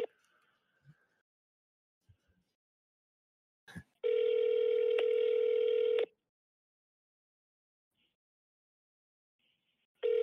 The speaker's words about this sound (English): We won't call another one, but we will call this one to see what the hell is going on and who the person was who answered the call. Let's see. It's ringing.